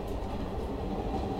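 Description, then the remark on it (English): A train rumbles steadily along the rails, a dense, continuous low clatter that stays even and fairly loud throughout, with no voices over it. “Can I have my train back now?”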